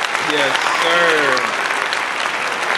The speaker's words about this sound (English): Jimmy Buckets. A round of applause for Jimmy Buckets.